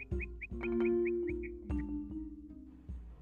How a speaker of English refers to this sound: Was that a bird? It was a bird. It's those birds I was telling you about yesterday.